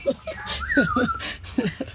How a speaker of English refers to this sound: The bird is seconding you in the background. I hear your bird.